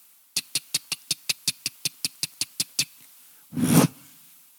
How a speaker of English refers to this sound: But in your oven, especially you got it, okay, I got a gas oven at home. In your gas oven, when you turn that thing on, beep, you hear this.